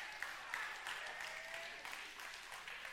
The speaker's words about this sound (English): Oh, that's nice. A little clap.